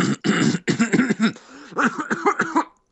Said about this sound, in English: You also cough like one.